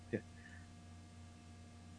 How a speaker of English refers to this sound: Yeah. Had a big sneeze. Bless you.